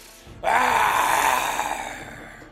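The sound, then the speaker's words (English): A person voices a single drawn-out, throaty roar imitating a lion, starting abruptly loud and slowly fading over about two seconds, with no other talk. “So the lion looked into the well. Now roar. The lion roared.”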